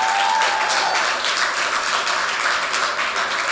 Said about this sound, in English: Can we clap our hands real quick for that?